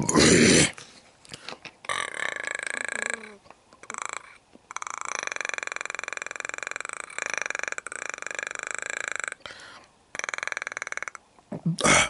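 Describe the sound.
A voice imitates the Predator creature from Alien vs. Predator with a guttural growl: a series of raspy, clicking, throaty bursts with strong tonal harmonics, broken by brief pauses over about twelve seconds.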